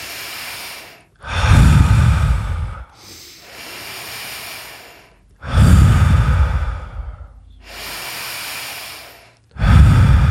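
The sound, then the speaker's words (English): Slow, deep circle-pattern breathing through the nose and into the belly, alternating long airy inhales with heavier, louder exhales in a steady cycle of about five breaths, clear with no talking. “So as I'm breathing with the circle, inhale, exhale, inhale through the nose.”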